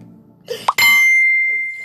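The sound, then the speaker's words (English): A single bright phone notification chime rings out suddenly and loudly, its clear tone lingering and slowly fading. A soft low rumble comes just before it. “Y'all done heard the phone go off like every time.”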